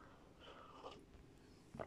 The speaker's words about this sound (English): Hang on, let me take a sip.